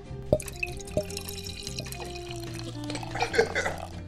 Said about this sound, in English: Quiet, the glass is upside down. This isn't going to work at all. Oh, it's pouring up into the glass. Oh, my God.